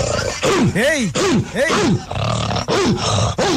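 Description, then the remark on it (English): A person imitates a growling dog with a series of loud, rough snarls that rise and fall in pitch, broken up by a couple of short shouted words. “Even that growl was impressive.”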